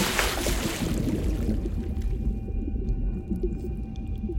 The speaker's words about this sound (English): With these clunky-ass, loose-fitting boots, Blair trips and slips down into the water.